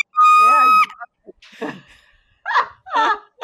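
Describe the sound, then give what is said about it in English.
An actress known for horror and suspense films lets out a short, piercing horror-movie scream lasting under a second, loud and shrill, followed by breathy gasps and a few bursts of laughter. “Happy to be the queen of the scream.”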